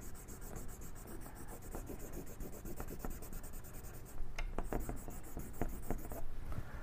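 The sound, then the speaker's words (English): A pencil scratches steadily across paper in quick, repeated shading strokes, fairly quiet, with a few sharper scrapes toward the end and no one talking. “people are writing into me asking me if the pencil works better when it's being used at an angle.”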